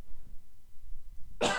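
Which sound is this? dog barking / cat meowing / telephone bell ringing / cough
cough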